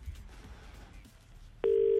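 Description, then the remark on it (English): A quiet, hissy stretch of background noise, then a loud, steady phone ringing tone suddenly starts near the end and carries on, an outgoing call from a private number ringing through on the line. “So I'm going to call someone right back now. Private number coming your way.”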